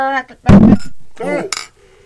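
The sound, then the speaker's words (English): Glasses clink together in a brief, bright toast, a single sharp chime between bursts of loud voices and cheering. “Okay, this is a fucking like drinking wine. Cheers!”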